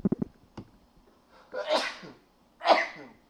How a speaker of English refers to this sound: Hold on, I gotta sneeze.